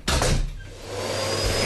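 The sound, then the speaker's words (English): A vacuum cleaner runs with a loud, steady whooshing roar that starts abruptly, carrying a thin high whine and a low motor hum underneath, with no voices. “Mom, the hoovering, please!”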